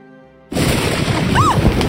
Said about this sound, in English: I woke to thunder, a crash loud enough to vibrate the floorboards